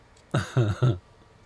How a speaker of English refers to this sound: Hold on a second, I got a cough.